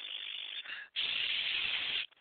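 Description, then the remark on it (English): A voice imitates hissing: a steady, breathy hiss for about half a second, a brief pause, then a louder sustained hiss lasting just over a second, with no words spoken. “his hisses.”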